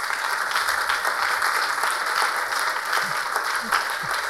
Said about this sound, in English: Please put your hands together and celebrate. The effort, the pain, the sacrifice that went into those tools. They are not the usual ones. Clap your hands.